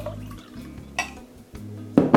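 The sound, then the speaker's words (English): Coffee concentrate and then water are poured into a glass in short splashing bursts, with a few clinks of glassware and a sharper splash near the end, fairly quiet. “Glass. Some concentrate. Some regular coffee. I mean, regular water.”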